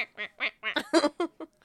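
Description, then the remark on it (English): A duck quacks in a quick run of about eight nasal, raspy calls, fairly loud, with short gaps between them and no talking. “It was a duck.”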